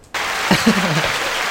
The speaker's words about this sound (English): Can we get some claps in the background?